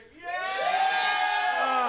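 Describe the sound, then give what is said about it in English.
An audience lets out a sustained burst of high-pitched cheering and squealing to say yes after a count of three, rising quickly after a short pause and holding loud and steady for a couple of seconds. “Yep, the squealing is good.”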